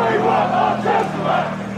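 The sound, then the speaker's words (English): A large crowd of Chelsea football fans roars and chants outside their home stadium in West London on April 20th, 2021, blocking traffic and protesting against a new European Super League: a dense, sustained wall of voices with rising and falling surges of shouting and a steady low hum underneath. “Chelsea fans are blocking traffic outside their home stadium, protesting against the formation of a new European Super League.”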